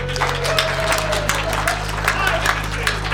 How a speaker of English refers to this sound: Applaud, people.